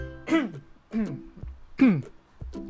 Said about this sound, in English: Okay, excuse me, I need to like clear my throat.